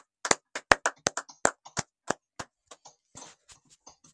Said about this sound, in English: Praise the Lord. Hallelujah. Let us give a clap of it to Jesus Christ.